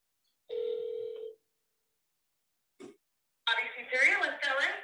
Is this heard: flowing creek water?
no